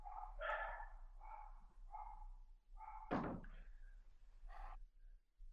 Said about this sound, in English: The dogs are going crazy, huh? It's speeding time. I think the wife's in there giving them their food and they're all fired up.